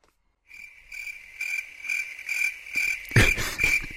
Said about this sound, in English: I had to try and maneuver my computer so I could do that cricket sound at the same time. I'm not sure if it worked. Hope it did.